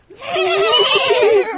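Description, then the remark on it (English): A person imitates a horse, voicing a loud, quavering whinny: a single wavering call of about a second and a half with trembling pitch. “A horse.”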